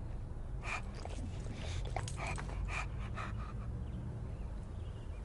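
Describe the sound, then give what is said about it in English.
A dog pants in quick, breathy bursts for a few seconds, then the rhythm fades out, leaving a low, steady background rumble. “Do you want the dog?”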